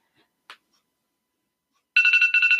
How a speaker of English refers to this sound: It's her Snapchat alarm.